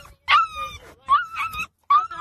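A dog whimpers and yips in three high, whiny bursts, each rising in pitch and then trailing off. The cries are fairly loud, with brief pauses between them.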